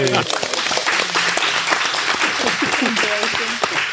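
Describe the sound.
An audience breaks into a loud, steady round of applause, dense clapping filling all four seconds while voices cheer and call out underneath.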